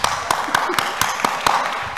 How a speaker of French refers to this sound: Applaudissez pour vous-même.